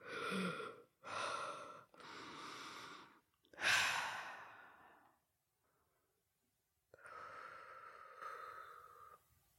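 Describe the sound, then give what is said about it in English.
A series of slow, deep breaths in a breathing exercise: several drawn-in inhales followed by a long, audible sighing exhale, a brief pause, then another steady breath in. “I like to start all the things in my recordings and entries with breathing, because I often don't realize how I'm holding my breath throughout different activities I'm doing during the day”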